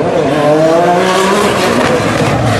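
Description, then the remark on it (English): A turbocharged V6 race car with one big turbo roars loudly down a street on a closed course, its engine note climbing steadily in pitch as it accelerates hard, with a rushing turbo whine over the harmonics and no voices. “One big turbo. It's going down the street.”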